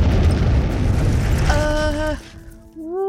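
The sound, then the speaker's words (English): A heavy, rumbling explosion-like boom roars for about two seconds beneath rock, following shaking and rumbling, a high tonal whine rising over its tail before it cuts off, leaving near quiet and a brief rising tone. “And then there was a huge noise, like an explosion, and everything went black.”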